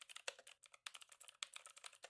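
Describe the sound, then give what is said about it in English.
Rapid, clacky keystrokes on a new, loud mechanical keyboard as someone types their name, a steady run of sharp clicks with a few harder strikes, with no talking. “I have a new mechanical keyboard and it's really loud.”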